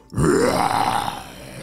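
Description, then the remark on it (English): A person roars like a dinosaur, one loud, growly, rising bellow lasting over a second, rough and throaty before it trails off. “And I can roar!”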